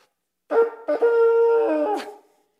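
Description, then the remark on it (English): A makeshift trumpet blown through an automotive funnel by someone who has never played an instrument gives a loud, buzzy, brassy blast: a short note, then a longer steady one ending in a squeaky upward crack, with no talking. “And no, this is not at all an automotive funnel that I bought at Menards because the guy at the music store wouldn't rent me an actual trumpet because I've never played it before or any musical instrument whatsoever.”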